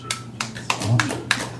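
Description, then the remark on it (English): One person clapping alone, about five sharp, crisp claps at an even, unhurried pace over a low steady hum, with no voices. “That was a lonely And clap.”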